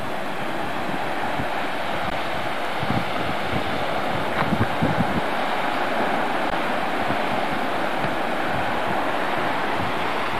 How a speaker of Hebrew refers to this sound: המפל שנשפך לים כמעט. זה מים טובים, לא מי ביוב. שומעים את הנחל מהמקום איפה שעצרנו.